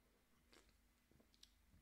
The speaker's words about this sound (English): Let me take a sip of my Coke Zero here. I'm getting a little thirsty.